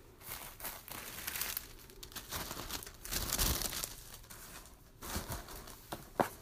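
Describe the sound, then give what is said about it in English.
Soft, irregular crinkling of thin tissue paper being handled while wrapping a box, with rustling bursts and a few sharper crackles, no voices present. “I think I'm going to go with tissue paper. I'm going to try tissue paper anyway.”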